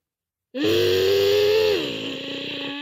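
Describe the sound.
A child's voice imitates a race car engine with a loud, sustained buzzing vroom, holding a steady pitch before dropping lower and fading slightly toward the end.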